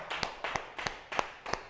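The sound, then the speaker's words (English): A short burst of hand clapping for a man's shoes, five sharp claps in a steady, even rhythm with no voices over them. “Let's just clap for his shoes, because I know they on point today.”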